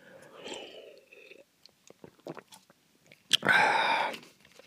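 sipping juice

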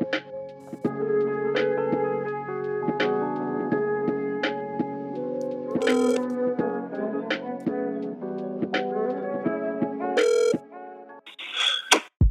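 phone call being dialed

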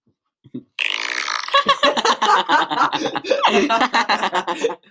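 fart sounds

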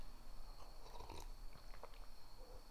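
sipping water

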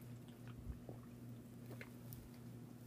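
sipping a drink

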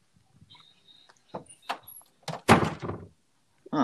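knocking on a door

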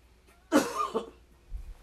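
coughing

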